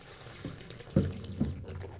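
An off-dry wine slurped with air drawn through it during wine tasting, making a bubbly, gurgling sound in three short pulses over a steady airy hiss. It is fairly quiet, with no talking.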